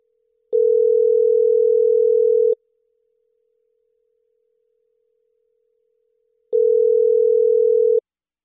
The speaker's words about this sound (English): Come on, man. Pick up the phone. I bet he doesn't pick it up because it's not my number.